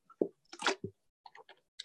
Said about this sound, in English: Get another drink of water real quick.